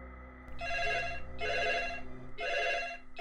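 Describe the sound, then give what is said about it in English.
A phone rings in three evenly spaced, buzzing bursts, fairly loud, with short pauses between them and no voices. “I was suddenly woken up to my phone ringing.”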